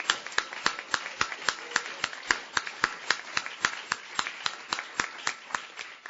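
Steady, fairly even audience applause thanking the people who set up the chairs and sound for the event, lasting about six seconds: a run of sharp, crisp claps a few per second, over a soft background hum, with no voices.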